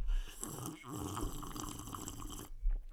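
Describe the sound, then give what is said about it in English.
A wet, slurping sip of hot green tea, a soft liquid draw lasting a couple of seconds and then stopping, with a faint gulp-like thump just after. “I just had another wee sip of this green tea.”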